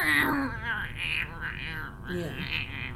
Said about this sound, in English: they include a YouTube clip of what cats sound like when they're trying to talk